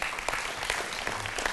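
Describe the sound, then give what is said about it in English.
A crowd applauds with steady, dense hand clapping as praise to God, a continuous crackle of many overlapping claps at an even moderate loudness, with no voices rising above it. “Give God a hand clap of praise on that.”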